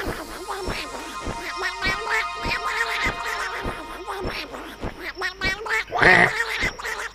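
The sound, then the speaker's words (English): A person imitates a tiny speckled duck, a wizard's magical familiar named Duckmaster, with a rapid string of nasal quacks, fairly loud, repeating in an uneven rhythm for several seconds, with a louder burst near the end. “And he kind of watches this tiny little speckled duck walks out of some blue portal somewhere.”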